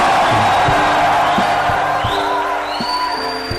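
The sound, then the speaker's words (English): An audience roars with loud, sustained shouting and cheering, high whoops rising over the din, while scattered claps ring out through the noise, giving the Lord a mighty shout and a clap. “Oh, give the Lord a mighty shout and a clap.”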